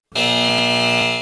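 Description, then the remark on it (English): A loud, harsh electronic buzzer blares in one continuous burst lasting about a second, with a dense, rasping tone and no voices. “Hit the buzzer.”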